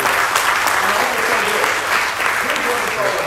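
An audience gives the Lord a hand clap in a dense, steady burst of applause that stays loud throughout, the many overlapping claps blending into a continuous crackling roar.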